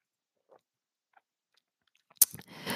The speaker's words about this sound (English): Literally sipping on some wine. I so much needed it.